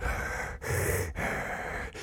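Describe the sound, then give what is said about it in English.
A voice imitates the heavy, raspy breathing of a silent caller on the phone: three loud, noisy breaths in a row, each broken by a brief pause, with no words spoken. “Food be calling me and hanging up in the middle of the night. Just be breathing like, hello?”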